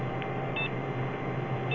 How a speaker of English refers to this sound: Oh, man. Oh, man. He's sending me a fax. I don't think he's going to pick up the phone.